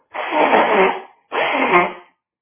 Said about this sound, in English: Let me blow my nose.